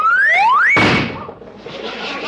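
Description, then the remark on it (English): A tire on an old Maxwell car blows out: a rising whistle climbs in pitch, then one loud bang, followed by a steady hiss of escaping air that slowly fades. “There goes the tire, boss.”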